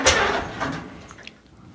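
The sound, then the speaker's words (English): An old 6-volt Super M tractor engine cranks over with a rough, grinding churn as someone tries to start it. It begins with a sharp mechanical burst, then labors steadily without catching, fairly loud, with no voices. “Let's see if it'll start.”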